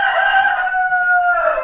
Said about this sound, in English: Gaulois Doré roosters used to be found all over the French countryside, and the sound of this particularly vocal breed could be heard at daybreak and in the afternoon and in the evening.